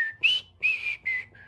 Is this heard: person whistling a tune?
yes